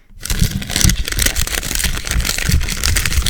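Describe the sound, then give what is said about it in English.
Paper being crumpled for about three seconds, a dense, continuous crackling and crinkling with many sharp little snaps, fairly loud and steady throughout, with no voices. “Crumpling paper? Yes! Crumpling paper!”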